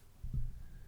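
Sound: burp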